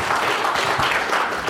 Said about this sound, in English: Let's give the Lord some more praise. Give him a round of applause after that time of worship.